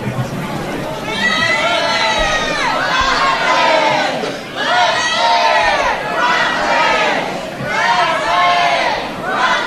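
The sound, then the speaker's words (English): A large crowd loudly chants candidate Leslie Rutledge's name over and over, one side of the room shouting Leslie and the other Rutledge, the rhythmic shouted bursts repeating every couple of seconds, sustained at full volume throughout. “So I need to see who can yell louder.”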